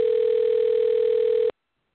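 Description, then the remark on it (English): A single steady electronic telephone ring tone, loud, holding for about a second and a half before cutting off abruptly into silence. “your phone's ringing.”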